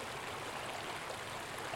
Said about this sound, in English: Resting in the dappled shade to escape the heat, we hear the water churn below the embankment where it drops over a gray ledge.